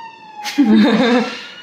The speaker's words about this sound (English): The ambulance is coming to the rescue.